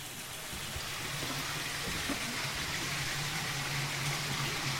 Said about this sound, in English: that water that you hear, Robert, never stops